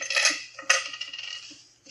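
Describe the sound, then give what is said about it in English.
Keys and other items taken out of a person's pockets are set down on a table with bright metallic clinks and jingling, two main clattering drops followed by a fading rattle, with no voices. “take everything out of your pockets. Put it right down here.”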